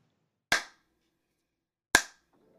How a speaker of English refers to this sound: And when I do those three claps, that's just so when I try to synchronize the audio recording and the video recording, it's one.